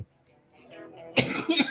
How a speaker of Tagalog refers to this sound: Excuse me. Ayan, ubo kasi ng ubo. Yosi ng Yosi.